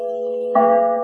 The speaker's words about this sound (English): And the voice of a great bell proclaiming liberty.